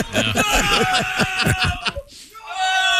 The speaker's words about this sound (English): And he keeps screaming like that for another 22 seconds.